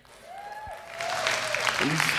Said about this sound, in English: I'm clapping for myself, so that feels weird.